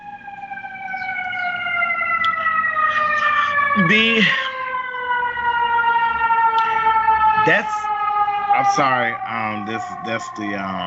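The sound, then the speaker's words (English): A fire engine siren on the west side of Chicago wails steadily and loudly, its pitch sliding slowly downward as it passes by, while people talk in brief bursts over it. “That's the fire engine.”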